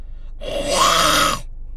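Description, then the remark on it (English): A single harsh, guttural metal-style scream, raspy and noisy, held for about a second before cutting off abruptly, performed alone with no talking. “My first scream that I learned, if you want to, like, try it, was the...”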